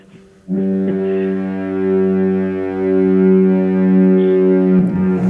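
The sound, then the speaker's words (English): A deep, loud foghorn in Duluth sounds in one long, steady blast of about four seconds, its rich droning tone holding evenly before cutting off abruptly, with no voices. “Duluth double foghorn, please.”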